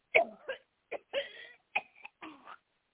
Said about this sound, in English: Cough that thing out. We close the gate in Jesus' name. Cough it on out.